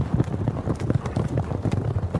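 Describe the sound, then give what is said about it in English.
A horse-hooves sound effect: rapid hooves clip-clop in a steady rhythm, each hollow knock landing quickly after the last as if a horse is trotting past, with no voices over it. “Those hooves trampling my ego, pushing my face further into the mud.”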